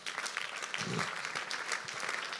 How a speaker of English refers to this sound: Very good question. Give her a clap of it.